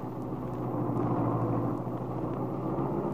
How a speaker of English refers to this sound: A few minutes later, Lisa was brought down and carefully helped into Paul's Roadster, with the lap robe tucked snugly around her. Now, Paul guides the car out of the hospital driveway.